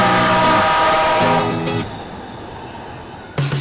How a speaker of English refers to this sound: Next train arriving.